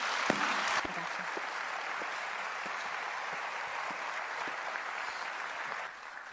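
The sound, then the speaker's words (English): Audience applause fills the space, a steady wash of many hands clapping that holds at a fairly even level for several seconds before dropping off slightly near the end. “Can you give her a round of applause, please?”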